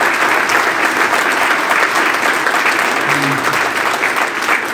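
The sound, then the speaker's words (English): A crowd applauds steadily for several seconds in support of the people who came out fighting and the medical staff of Bantry Hospital, a dense, even wash of clapping hands at a constant loud level with no talking over it. “They deserve your support and your applause.”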